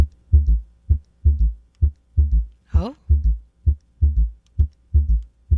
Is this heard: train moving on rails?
no